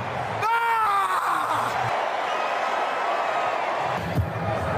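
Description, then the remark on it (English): George Kittle lets out a loud, sustained yell at a roaring stadium crowd, screaming nothing in particular, the wash of cheering noise continuing steadily after the shout fades. “Yeah, so at one point there is George Kittle just screaming at the crowd, just nothing in particular.”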